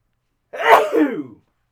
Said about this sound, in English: Big shout-out sneeze from producer ….